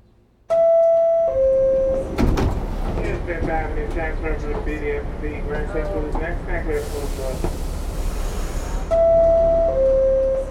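A subway car on a ride home from work rumbles steadily under a two-note descending door chime, with whining, tonal mechanical sounds, then a loud pneumatic hiss as the doors work, followed by the chime again.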